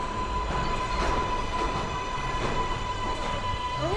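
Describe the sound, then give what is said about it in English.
A subway train rumbles along steadily, a thin constant whine riding over the low roar, with occasional rhythmic clanks from the wheels. Nobody speaks. “One night, they run into each other on the subway and have a moment of vague recognition and small talk.”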